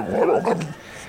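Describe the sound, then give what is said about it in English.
Basil the Boxer, a boxer dog, lets out a gruff, throaty bark that rolls into a short low growl. It is loud and brief, then trails off into quiet. “And the late, great Basil the Boxer, he's saying all this cat talk.”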